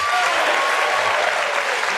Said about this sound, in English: I love how we cheer that on every time a fucking celebrity says that.